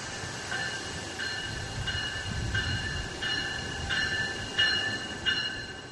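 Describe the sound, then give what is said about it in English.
Electric South Chicago commuter train number 318 to Millennium Station rolls past, a steady low rumble under bright tonal whine, with rhythmic wheel clacks about every half second growing slightly louder toward the end. “describes growing up near the Metro Tracks in Chicago's Woodlawn neighborhood and asked us to play the soothing sound of the train passing by.”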